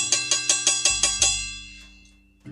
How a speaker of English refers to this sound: I should get like a little thing where I can do a bell sound.